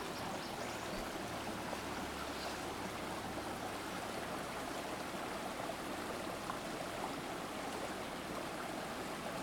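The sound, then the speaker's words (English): Steady running water flows continuously at Heartbreak Meadows, a broad, even rush like a stream, with no voices and no breaks for the whole stretch. “We're checking the water here.”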